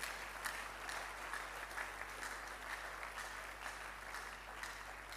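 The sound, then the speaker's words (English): A crowd claps steadily and continuously, a dense wash of many hands with no pauses, holding an even, moderate loudness throughout with no voices standing out. “You're clapping the second house right now.”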